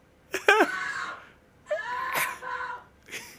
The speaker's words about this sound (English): He's rolling around screaming on the floor. He's got the knife.